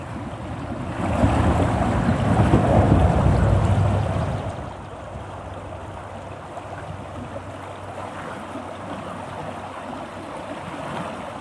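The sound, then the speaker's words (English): Steady rushing of flowing river water, a broad continuous wash that swells louder early on, then settles into an even, moderately loud churn with no voices. “It's really lovely to feel the pulse of this river.”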